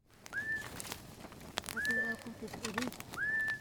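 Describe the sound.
Three sharp, rising whistles repeat at a steady pace, clear, over a soft outdoor background with faint murmuring voices: Hadza hunters in a valley in Tanzania whistle at sunrise to call a bird to lead them to honey.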